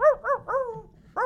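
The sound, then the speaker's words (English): Odie, the cartoon dog from Garfield, barks four times in quick succession along to a song: short, bright, loud, tonal yaps, with the third drawn out into a longer howl-like bark before one final yap. “I love how Odie's also kind of barking along.”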